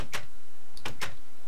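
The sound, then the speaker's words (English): A short mechanical click as a door button is pressed in a video game, followed by two quick bursts of a sliding door mechanism as a door opens, fairly loud, with no voices. “There's a button here. Hit the button. What did that open? Something opens.”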